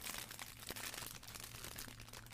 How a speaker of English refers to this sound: Also, I'm eating an Uncrustable.